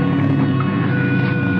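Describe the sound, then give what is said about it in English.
A boat's engine drones steadily and fairly loud, a dense low rumble with a faint whine riding on top, as the craft churns through the water, coming in toward people on a beach. “The boat is coming in at us now.”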